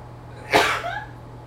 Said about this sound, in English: I was sneezing all morning.